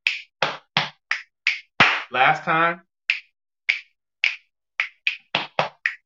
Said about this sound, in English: So you got 7 parts. 2 snaps, right? 2 snaps. You got 2 hits to your chest, 2 more snaps, and we clap. So it's snap, snap, hit, hit, snap, snap, clap.